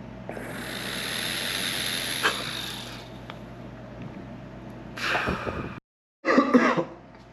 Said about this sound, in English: Excuse my, all my coughing.